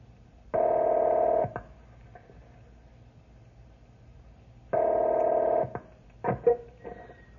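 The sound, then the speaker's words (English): A telephone being dialed to call the ranger station at Forest Creek: two long, steady buzzing tones separated by a few seconds of quiet, then a short cluster of sharp clicks. No one speaks. “I'll call the ranger station at Forest Creek and see if they pick this up.”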